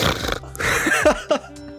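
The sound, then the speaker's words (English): A run of loud, breathy sniffs as someone smells a drink in a glass for a smell test, with mouth open and mouth shut: noisy, hissing inhalations drawn in short bursts, with a couple of sharper snorty catches near the end and no talking. “Okay, let me do a sniff one more.”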